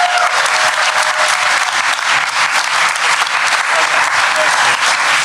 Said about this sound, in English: All right, please, a round of applause for Only Child by John Hodgman.